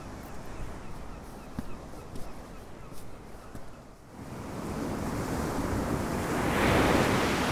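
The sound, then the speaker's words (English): Waves breaking on Mellandrieff Beach: a rough, hissing wash of surf that softens briefly, then swells into a louder rushing surge near the end. No one speaks. “I've reached Mellandrieff Beach now, which seems to be populated by local dog walkers.”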